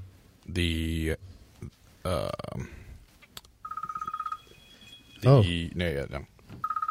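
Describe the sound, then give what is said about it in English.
An electronic phone ringtone trills steadily for about a second, then starts again near the end, interspersed with loud, gruff vocal bursts like belches or grunts. “We're just not going to silence the phone or anything.”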